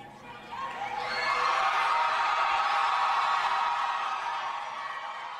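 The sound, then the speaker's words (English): A large rally crowd in El Paso cheers and roars for Beto O'Rourke after his Senate campaign against Ted Cruz, swelling quickly to a loud, sustained wall of shouts and whoops that holds steady before easing slightly at the end. “The crowd is acting like they're at a rock concert.”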